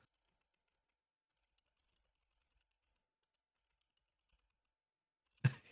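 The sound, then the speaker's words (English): Faint, sparse clicks of typing on a computer keyboard, a few scattered keystrokes, then one louder thump right at the end. “I don't know where I'm gonna go with this one, so I'm just gonna maybe start typing and see what happens.”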